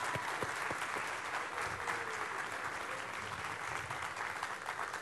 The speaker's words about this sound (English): Can we give this team from North Greenville a big hand today? Wow.